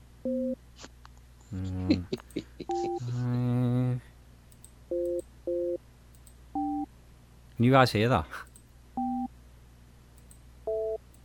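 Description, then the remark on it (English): A telephone dialing a person's number plays a series of short paired dial tones and beeps, evenly spaced and clear, while a voice briefly speaks over the sequence and another burst of talk cuts in midway. “It's just dialing through now.”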